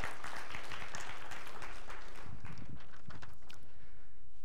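A crowd breaks into steady applause, many hands clapping in a dense, continuous patter, then gradually thins toward the end.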